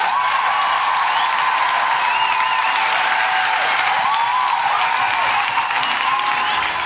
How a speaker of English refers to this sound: That was a big applause.